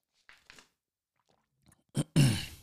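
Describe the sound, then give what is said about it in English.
A few soft mouth clicks and sips, then a sharp gulp followed by a loud, breathy exhale as someone drinks water. “Let me take a swig of this water.”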